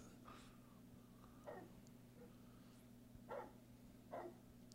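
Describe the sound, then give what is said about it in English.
A big dog barks four times at uneven intervals over a steady low electrical hum. There is no talking. “That's a big dog.”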